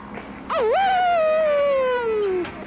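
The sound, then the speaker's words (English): A human voice imitates a wolf howl, the howling of a movie character called Wolf, a drunk college student: one long, loud, sustained note that rises sharply, wavers, then slowly glides downward before cutting off, with no other sounds. “This is one of the students that most of his lines is just him howling.”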